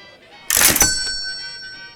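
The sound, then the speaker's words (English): A cash register bell rings once: a sharp mechanical clunk followed by a bright, high ringing tone that lingers and slowly fades over about a second and a half. “Every time a bell rings, it means some angel got his wings.”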